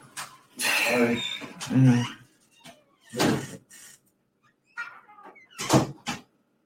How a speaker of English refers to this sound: that door is squeaking.